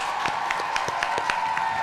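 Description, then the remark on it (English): A short burst of applause: sharp, fairly regular claps, moderately loud, over a steady background hum, with no one talking. “Everybody in YouTube land, help me give a big round of applause for”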